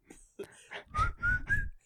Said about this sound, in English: I can't whistle that high either.